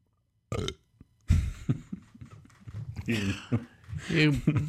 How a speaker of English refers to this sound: Why did you burp? You're the worst,